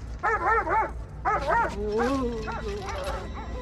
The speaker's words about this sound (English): And so that, you know, everybody starts going crazy. Dogs start barking.